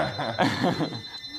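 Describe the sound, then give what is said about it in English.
A telephone rings with a steady, high electronic tone that runs through the whole moment, while soft chuckling and voices rise underneath in the middle. “Don't answer the phone.”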